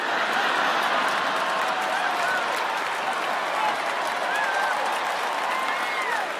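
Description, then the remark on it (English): Sustained, dense applause from a large audience fills the whole stretch, steady and loud, with a few faint voices and cheers mixed into the wash of clapping. “And if you're not clapping right now, my point exactly.”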